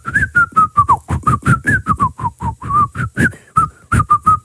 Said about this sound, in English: Why do you flap your arms when you whistle? Like a bird.